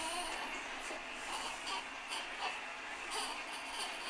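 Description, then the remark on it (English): A recorded washing machine sound, played to help a baby go back to sleep, runs as a continuous, even hiss-and-whoosh at steady volume, with a couple of faint, brief high-pitched squeals rising over it. “He likes the washing machine. So we'll play the washing machine.”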